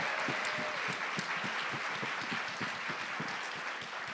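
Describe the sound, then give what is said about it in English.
A crowd claps steadily for about four seconds, a dense wash of many hands with scattered sharper claps standing out, holding an even, fairly loud level throughout with no voices on top; a round of applause for Generation UCAN. “Can we all give a round of applause for UCAN?”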